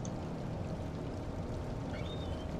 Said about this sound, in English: You guys hear that? It's like babbling brook and bird.